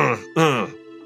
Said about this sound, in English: And I'll kind of like clear my throat.